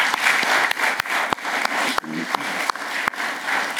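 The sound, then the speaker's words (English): An audience breaks into a steady round of applause for the fathers, mothers, grandfathers and grandmothers present, dense overlapping claps filling the whole stretch with a few sharper individual claps standing out, fairly loud and sustained throughout. “In this congregation today, I'm sure our fathers and mothers, grandfathers and grandmothers, I think we should also give them a round of applause.”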